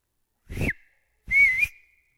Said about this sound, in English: So I actually went out to the street, and I whistled. Do you want to hear the whistle that I did?